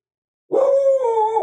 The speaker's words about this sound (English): Oh, hell, now Maria joined the show. Oh, yeah, she's barking her ass off out there, guard dogging it up.